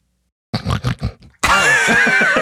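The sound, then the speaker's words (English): A person imitates a pig snuffling: four quick, rough snorting bursts, a brief pause, then a longer, louder throaty grunting snort that runs to the end. “It's a swine. Snuffle. Some sort of... pig snuffle. Sniffly swine.”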